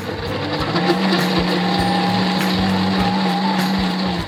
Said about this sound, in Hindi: इनका power grinder and blender है, काफी दमदार है। तो इसको अब हम यहाँ रखते हैं। रेडी, अब प्योरी रेडी।